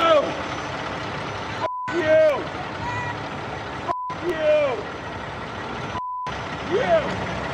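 A truck idles and moves, its engine rumbling steadily while a backup beeper sounds three evenly spaced beeps, with squealing brake-like whines rising and falling between them.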